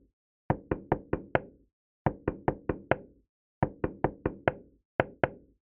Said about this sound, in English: After stopping at his apartment, Max knocked on Rose's door to the rhythm of Angels We Have Heard on High.